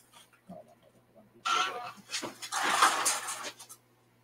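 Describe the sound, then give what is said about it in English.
A plastic bag of dog treats crinkles and rustles loudly in two long bursts to wake a sleeping dog, with a few faint clicks and rustles before it and no one talking. “Secret weapon is this bag of treats that this dog really likes to eat, and a little squeaky pig.”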